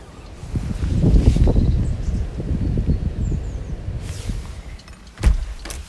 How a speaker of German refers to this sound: Und wir haben sturmfrei, wortwörtlich, weil bei uns Sturm ist. Ich mach mal fest auf. Dann seht ihr das, hört ihr das auch, was wir sehen.